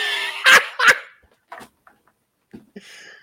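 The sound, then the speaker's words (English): A large dog barks twice in quick succession, loud, as it is being let out, followed by a few faint scuffs and quiet rustling sounds as things settle down. “I have to let my horse of a fucking dog out.”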